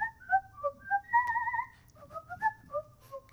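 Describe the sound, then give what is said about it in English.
A person whistles a wandering, melodic tune of short notes and one longer held note, clear, with a faint low rumble underneath and no talking. “And before you, a thing is just kind of whistling.”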